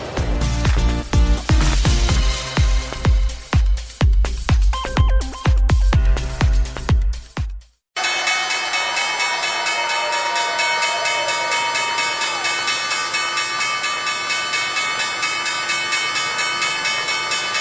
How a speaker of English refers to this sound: First Move, live from the New York Stock Exchange. A colourful backdrop there for the opening bell just a few moments ago, though not good in terms of direction here.